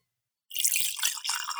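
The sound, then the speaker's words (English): Whiskey pours into a glass close to the microphone, a steady splashing, gurgling stream that starts abruptly after a brief silence and runs for just over a second, with no voices. “I'm going to record the pour here in front of the microphone.”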